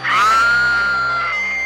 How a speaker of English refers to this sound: Jamie Lee Curtis has a good scream. Oh, yeah. You know they did a scream for the audition. Mm-hmm. It is a really good one.